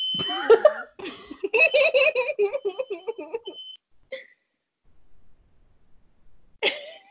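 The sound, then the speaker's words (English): A high, steady electronic smoke alarm tone sounds for a few seconds beneath a burst of voice and cough-like noises, then cuts off, followed by a brief chirp and a final sharp burst. “You better unplug that damn alarm.”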